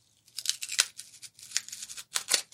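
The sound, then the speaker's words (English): Polystyrene being cracked and squeezed, a steady run of bright, crunchy crackles and squeaky snaps in irregular bursts for a couple of seconds, with a faint low hum underneath and no talking. “Now we've got cracking polystyrene.”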